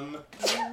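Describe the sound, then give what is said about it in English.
A single short sneeze bursts out sharply, its airy hiss rising over a low hum of voice, lasting well under a second. “Bless you.”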